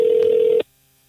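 A telephone ringing tone: one steady electronic beep that holds for about half a second, then cuts off abruptly into near silence. No one speaks.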